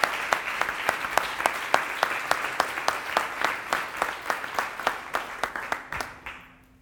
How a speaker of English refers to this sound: All right, all right. Well, give God a hand clap. Give God a hand clap.